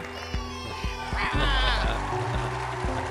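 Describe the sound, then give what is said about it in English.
A goat lets out a wavering, quavering bleat near the middle, fairly loud, over a steady thumping rhythm that runs throughout. “When you're stoned, but you and your goat find bread.”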